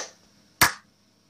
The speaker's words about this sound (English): Clap.